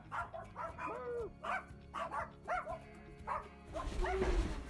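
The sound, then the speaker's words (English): Puppies in Tuscaloosa bark and yip in quick, uneven bursts, high-pitched and excited, with a louder, scuffling stretch near the end over a low background hum. “But the time has come to leave Tuscaloosa, and I need to say my most important goodbyes. The puppies.”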